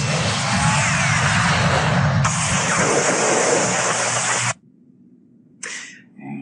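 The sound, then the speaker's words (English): A jet propulsion pack roars loudly with a harsh, steady blast for several seconds, cuts off abruptly, then gives one short hissing burst near the end. “We can if we give everyone jet propulsion packs.”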